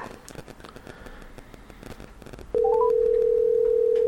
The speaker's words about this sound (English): Does he have any idea you're calling him? Well, he does now. The phone rings.